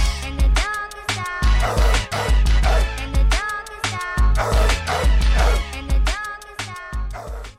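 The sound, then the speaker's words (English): A dog barks again and again in quick, loud bursts over a steady thumping low beat that runs underneath throughout. “I got a couple dog moments.”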